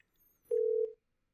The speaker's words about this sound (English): We're ringing. Can you hear that okay?